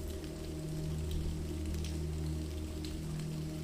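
Steady rain patters continuously over a low, sustained droning hum, with occasional sharper drips standing out against the soft, even wash of sound. No voices are present.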